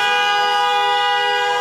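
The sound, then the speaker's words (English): A car horn blares in one long, unbroken honk, a loud, steady, buzzy tone held for the whole moment with no talking. “Or you can honk your car horn.”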